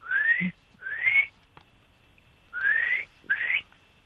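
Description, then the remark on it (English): A person whistles a bird-like call: four clear, rising whistled notes in two pairs, loud, with a short gap between pairs and no talking. “I'm going to whistle.”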